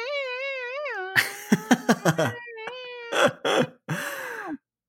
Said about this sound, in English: A long meow. Like, wow. Your cat has good breath control. Yeah, I know. I'm amazed about it. And sometimes it like warbles up and down.